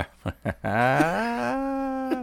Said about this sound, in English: that wasn't even Tennessee Lee. That was the horse.